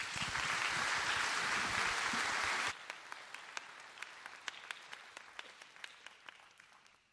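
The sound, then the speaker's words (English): A church audience bursts into dense, steady applause for the children's ministry kids, then it suddenly thins to a handful of scattered individual claps that slowly trail off. “All right, why don't you give them a round of applause.”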